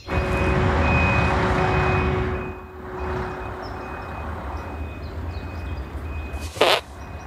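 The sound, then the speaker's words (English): A short, sputtering fart bursts out near the end, loud and brief, over a steady low rumble with a faint high whine running beneath it. “Hey, it farted right in your eye, huh?”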